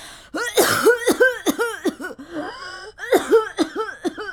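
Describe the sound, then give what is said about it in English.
An old man staggers through an emergency door, coughing heavily and repeatedly into a grimy old handkerchief in wet, hacking bursts, two fits separated by a brief raspy wheeze, loud, with no speech. “An old man staggered through, coughing, and I mean coughing, into a grimy old handkerchief.”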